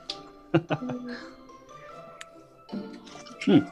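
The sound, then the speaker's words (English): Liquid sloshing and dripping inside a water bottle, a few short wet bursts near the start and a louder splash at the end, with faint voices murmuring underneath. “Oh, my water bottle.”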